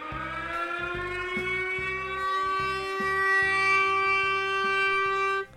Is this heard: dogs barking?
no